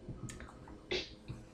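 Gentle warm water sloshing in a small bottle warmer, a few soft drips and splashes with one slightly fuller slosh midway, all fairly quiet and with no talking.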